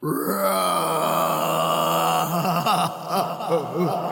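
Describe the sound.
A voice imitates a growl of anger and despair, a sustained low, rough vocal snarl that holds steady, then wavers and rises in pitch near the end, loud throughout with no other talk.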